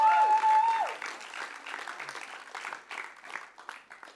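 A group applauds with dense, steady clapping that runs for about four seconds, opening with a brief sustained whistle-like tone before the clapping fills out and continues at an even level.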